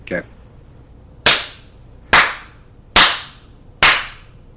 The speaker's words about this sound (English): Pause for 1 second so I can make some clap sounds.